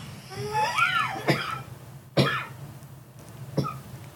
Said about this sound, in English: Cough break.